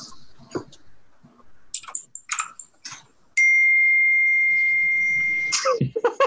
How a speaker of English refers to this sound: I like to think that that is the sound it makes as it dies, because it's the That's the sound a slot machine spirit makes when it dies.